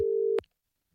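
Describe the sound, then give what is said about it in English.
A steady telephone tone hums for a fraction of a second while a call is being redialled, then cuts off abruptly with a soft click, followed by silence. No one speaks. “Okay, we'll phone him again.”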